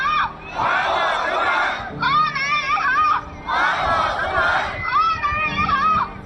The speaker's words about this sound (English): The crowd is shouting, "Henan banks, give my money back." Their bank accounts have been frozen since April, locking them out of their savings.